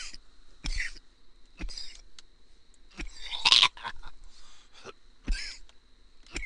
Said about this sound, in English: All right, excuse me. I know my coughs are loud. I got to stop fucking coughing into the mic.